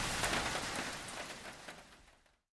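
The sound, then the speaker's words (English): Steady evening rain pours down on a farm in a dense, even hiss with faint scattered drips, moderately loud, then cuts off abruptly after about two and a half seconds. No voices. “You're listening to Evening Rain at the Farm.”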